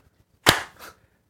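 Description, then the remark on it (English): A single loud, sharp hand clap, billed as the last 'thunder clap', cracks out with a bright, full-bodied snap, followed moments later by a softer second burst as the sound fades into silence. “We're getting the last thunder clap.”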